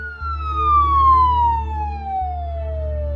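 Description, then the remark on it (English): A loud siren wails, its pitch sliding steadily downward as an ambulance races towards a national park, over a low rumbling engine drone. “As the ambulance raced towards the national park, a car suddenly jerked to a halt upon passing the emergency vehicle.”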